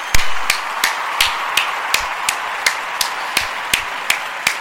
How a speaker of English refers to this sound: Once again, give another hand clap.